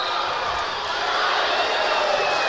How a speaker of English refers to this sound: Here's a drive by Worsham, and Flash lays it in. 34-33. Adams back on top by one. Chuck Worsham using that explosiveness that he has for that driving layup. That brings the crowd to life.